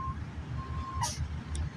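A faint, steady electronic buzz from a phone notification hums on and off, ending in a couple of short, bright chirps, all over a low background rumble.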